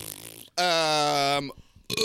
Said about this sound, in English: Burping.